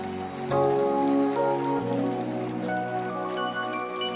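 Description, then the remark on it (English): A church audience claps hands in a dense, steady patter that runs the whole time, mixed with sustained musical chords that shift partway through. No one speaks. “Can you clap your hands?”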